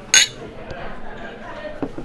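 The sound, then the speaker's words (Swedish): Glasses clink together once in a bright, ringing toast near the start, followed by low background murmur and faint movement noises. “Men du, skål igen och tack. Skål!”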